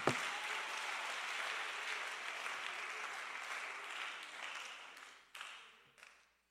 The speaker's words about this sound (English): Oh, clap your hands to the King of Kings.